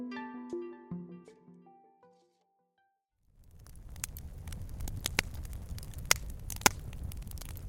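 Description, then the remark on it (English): A few fading musical tones give way to a short silence, then a smokeless Solo Stove fire pit crackles steadily, with sharp irregular pops and snaps over a soft, constant hiss. “The sound of a crackling fire.”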